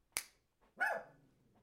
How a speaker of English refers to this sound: I got this little doggy right here.